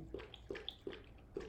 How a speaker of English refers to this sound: drinking water. Which is smart.